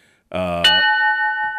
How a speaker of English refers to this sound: Well, hey, that's the bell that reminds me that we're about to rejoin. Damn, that thing is loud.